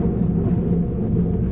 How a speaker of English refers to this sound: Still thundering.